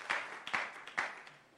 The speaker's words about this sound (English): Why don't you take your seat with a clap offering to the Lord? Wonderful.